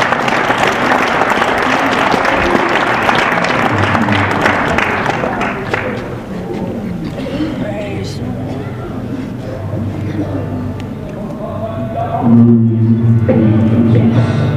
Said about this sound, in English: Give the Lord a hand clap of praise this week.